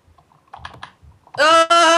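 A few quick keyboard clicks tap out close by, then a loud, sustained, tonal vocal sound abruptly takes over, briefly breaks off, and returns.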